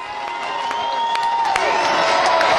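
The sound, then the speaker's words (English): A large concert crowd roars with sustained cheering and scattered whistles as the singer and the band come back out to wave goodnight, a dense continuous wall of noise at steady loudness, with sharp claps and whoops popping out throughout. “Listen to the crowd.”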